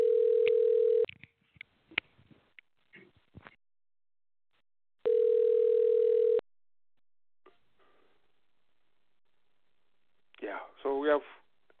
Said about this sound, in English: Okay, I've got one phone which is calling. I don't know which one. I apologize for that.